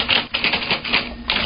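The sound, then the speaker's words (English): Rapid, uneven clatter of typewriter keys struck in quick succession, fairly loud, with no voices, as Trixie, the dog of author Dean Kuntz, types away in his office. “Anyway, I walked into Mr. Kuntz's office and found Trixie, his dog, typing away.”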